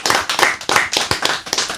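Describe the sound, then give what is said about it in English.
A short burst of applause for the house band on the Kiss Room: many hands clapping in a dense, uneven patter, fairly loud and steady for about two seconds, with no voices over it. “House band, round of applause again.”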